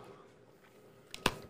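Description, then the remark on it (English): A quiet bite into a pink piece of food followed by a short burst of chewing, with a sharp crunch-like snap near the end against a faint, low background. “It gets worse when I bite it, huh? Did you chew it? I'm about to.”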